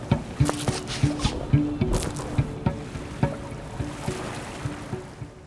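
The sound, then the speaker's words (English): A moving motorboat's motor hums steadily while water slaps and splashes against the hull in rhythmic bursts, moderately loud, with no voices. “I just stitched up a dude's guts on a moving motorboat.”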